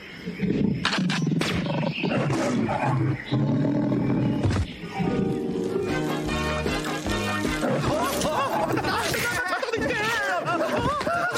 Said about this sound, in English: But instead of doing the routine smoothly, the tiger remembers how they stole him from his natural habitat and then attacks them.